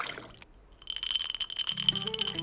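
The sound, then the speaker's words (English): Ice clinks briefly against a glass, then a drink is poured in, a steady splashing stream whose pitch rises as the glass fills. No voices. “Glass, ice, pour.”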